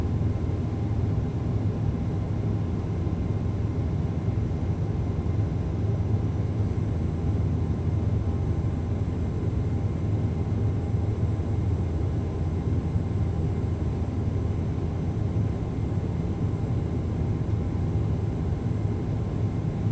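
A steady, droning rumble fills the space, heavy in the low end and unchanging, like the constant engine hum inside an airplane cabin at cruising altitude, with no voices present.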